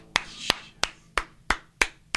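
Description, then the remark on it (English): Seven sharp hand claps in a steady, slightly uneven rhythm, each a crisp bright smack with a quick decay and no voices between them. “All right, we got to get claps in.”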